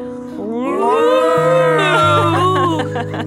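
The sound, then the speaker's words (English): A person vocally imitates a whale call with a long, rising and falling moaning hoot, sustained for about three seconds over a steady low drone, loud and without any words. “Yes, but for short, we can also hoot like a whale.”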